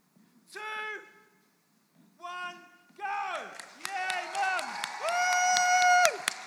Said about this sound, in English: We are going to give mums a massive cheer and a massive round of applause after three. Can we do it? And then, guys, we can just join in because it'd be great. Are you ready? Three.